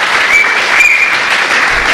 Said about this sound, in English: Yeah, we had to pay extra for the strong applause track on iTunes.